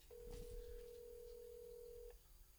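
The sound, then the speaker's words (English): A single steady ringback tone from an outgoing phone call that goes unanswered, one sustained electronic buzz lasting about two seconds, over faint low rumble and handling noise, then silence. “I can't believe we're wasting recording time on ringtones.”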